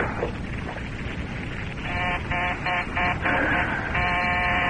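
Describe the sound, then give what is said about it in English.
A telephone rings unanswered with a buzzy, trilling tone that pulses rapidly, then holds steady, over a constant layer of hiss. Nobody speaks while it rings. “Keep ringing. Keep ringing. He'll never answer you.”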